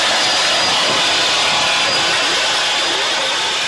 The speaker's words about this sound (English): I haven't heard them wing those engines one time, and this is rough throttling at 90 miles an hour, folks.